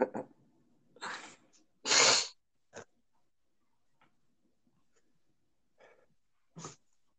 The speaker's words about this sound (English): Yeah, hold on, let me catch my breath. I don't want to be breathing heavy like Chris Farley after running like down the street or something.